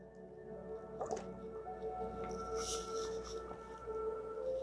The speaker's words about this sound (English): I had to take a gulp of water.